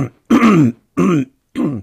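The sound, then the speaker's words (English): A person in Wisconsin clears their throat three times in quick succession: a longer, gravelly first rasp followed by two shorter, rough ones, fairly loud with brief pauses between and no talking. “Got a little frog in my throat here.”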